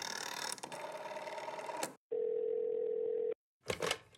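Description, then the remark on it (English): Mechanical clicking and whirring as a phone is dialed to call a realtor, then a steady, loud telephone dial tone hums alone for over a second before cutting off into a short burst of clatter. “Like, get the realtor on the phone.”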